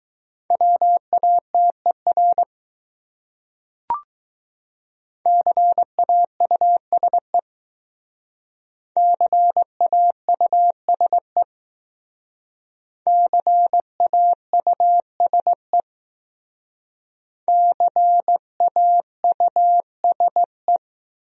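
Morse code at about 15 words per minute, spelling one of the top 200 common words in a speed practice drill: a steady mid-pitched tone keyed into five separate bursts of dots and dashes with pauses between them, plus a brief click early on. No voices.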